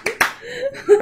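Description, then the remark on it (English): Two sharp, loud hand claps in quick succession, followed by a brief stretch of voiced, laugh-like sounds rather than a sustained round of applause. “The friends round of applause, clap.”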